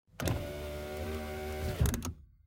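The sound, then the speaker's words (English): A car's power window closes: a steady electric motor whine with a slight rising pitch runs for about a second and a half, framed by a clunk as it starts and a firm thump as it seals shut. “Now close that window and stop wagging your tail around.”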